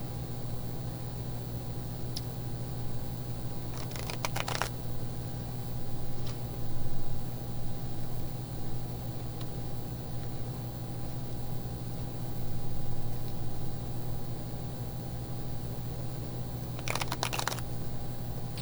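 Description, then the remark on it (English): Two short, crisp riffling bursts of an Osho Zen Tarot deck of cards being shuffled, cards somewhat hard to shuffle, far apart, with a few faint clicks in between, over a steady low background hum and no talking. “Ooh, the cards are like hard to shuffle a little bit.”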